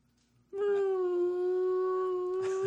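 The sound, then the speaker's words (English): A person voices a long, steady, low moaning tone, imitating a whale call. The sustained hum starts abruptly, holds one pitch for about two seconds, then breaks off with a breathy release. “That's probably what a whale would say to another whale.”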